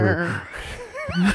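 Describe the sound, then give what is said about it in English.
A person's voice does a loud horse impression, a wavering whinny-like neigh with snorting breaths, in two bursts separated by a brief quieter moment. “It's like a horse going.”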